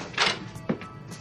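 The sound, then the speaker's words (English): A door opens quietly: a short airy scrape, then a single dull, low thunk like a latch or the door settling. No voices. “The door's open.”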